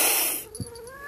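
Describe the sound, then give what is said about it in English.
A voice imitates a harsh, menacing hiss, like a vampire in a film hissing at a five-year-old girl he has lifted by the face, a loud burst of breathy noise that fades after about half a second into a brief, rising, whining tone. “And he hisses at her, like...”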